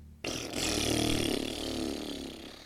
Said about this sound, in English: With the sweetest smelling, most fragrant fart.